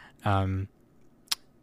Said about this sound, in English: Let's see, what I'm clicking through them right now.